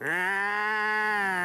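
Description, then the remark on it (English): A single drawn-out bleat from a goat on Dorky Island, loud, holding a steady nasal tone for over a second with no other sounds around it. “Oh, man, it's a goat.”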